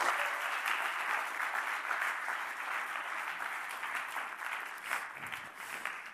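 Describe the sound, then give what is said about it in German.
Audience applause fills the whole stretch, a steady dense crackle of many hands clapping at a fairly even loudness, with no one speaking over it. “Geben wir doch nochmal einen Applaus.”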